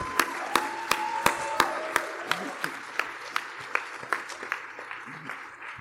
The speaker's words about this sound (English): Everybody, yay! Give a big round of applause. Nalo Hopkinson.